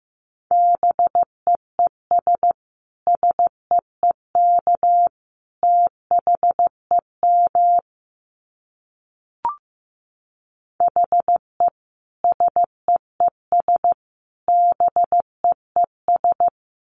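Morse code sent at 15 words per minute as a steady mid-pitched beep, keyed in quick short and long bursts grouped into words, with a silent gap and a single click partway through.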